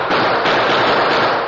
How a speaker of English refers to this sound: A fraction of a second after the first wild burst of gunfire from Webb, Kramer, and Mex, the Lone Ranger and Tonto slipped from their mounts and ducked behind a nearby rock. Then the masked man's guns went into action.